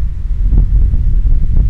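Loud, low rumbling wind buffets the microphone continuously on a very windy, cold day where people are surfing, with gusty surges and thumps throughout and no voices.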